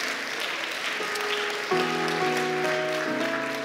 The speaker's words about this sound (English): I want to welcome you all to Refresh Community Church, and I want to welcome you to Advent. Let's give God a hand clap of praise for Advent.